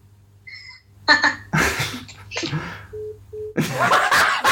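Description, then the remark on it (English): A phone line cuts off as a woman hangs up the call: two short, steady electronic beeps sound in quick succession, surrounded by bursts of noisy laughter or commotion and a low background hum. “She hung up. My wife just hung up on us.”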